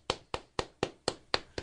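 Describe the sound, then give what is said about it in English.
Seven crisp, evenly spaced hand claps in a steady rhythm, moderately loud, sounding like a single person clapping rather than a full crowd, with no talking. “Our live studio audience won't stop applauding because we were so good at it.”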